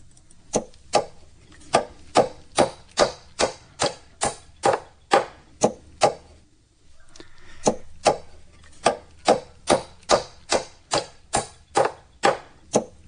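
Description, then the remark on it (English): Steady, sharp hammer blows strike in a regular rhythm, about two per second, with a brief pause midway before the pounding resumes at the same even pace. “It's hammering with a hammer.”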